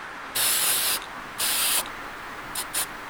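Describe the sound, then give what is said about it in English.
An aerosol can sprays crackle finish onto wood, making it crinkle to look old, in four hissing bursts: two longer blasts of about half a second, then two quick short puffs, fairly loud with no talking. “And then you spray this, it crinkles.”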